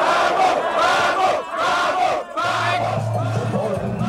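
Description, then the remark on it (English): A large crowd roars "yes" together in loud, rhythmic unison shouts, about two per second, continuing throughout, answering whether they are willing to fight and die for their country. A steady low drone joins partway through. “And the response is an overwhelming yes.”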